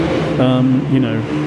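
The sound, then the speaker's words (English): A motorbike engine drones past outside in a steady, buzzing tone that swells briefly, dips, then returns, moderately loud. “I'm turning your mic down every time a motorbike goes by.”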